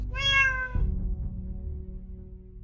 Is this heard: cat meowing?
yes